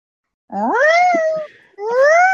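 A loud, drawn-out meow rising in pitch, then a short pause and a second meow starting, with no talking.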